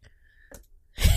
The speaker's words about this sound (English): I'm sniffling into the mic. Oh, too much. Sorry.